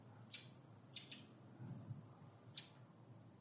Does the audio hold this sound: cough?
no